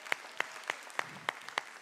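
Congregation applause heard as steady, rhythmic clapping: seven sharp, bright claps about a third of a second apart, evenly spaced over a faint background hum, with no talking.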